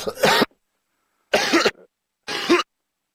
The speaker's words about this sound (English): I've got a cough again, excuse me.